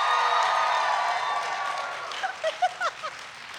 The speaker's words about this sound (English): Did bagel bites just win? I think bagel bites just won. I think it did. All right. I think it was more enthusiastic cheering.